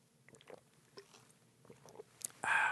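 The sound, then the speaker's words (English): Someone gulping water from a Gatorade bottle: a run of soft, wet swallowing clicks at an uneven pace, ending in a sudden louder, breathy gush of sound. No one speaks. “Some intense water drinking.”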